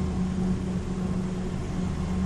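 A steady, low engine hum fills the cabin of a moving car in Cairo, with a constant rumble and faint road noise and no voices.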